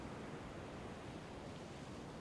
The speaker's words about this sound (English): Listen to the waves and allow the fear to dissipate.